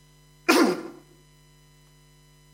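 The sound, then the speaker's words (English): One sharp, harsh cough from a speaker giving a Bible talk, bursting out loudly and trailing off within about half a second, with near silence before and after and no talking. “Excuse me, coughing a bit this morning.”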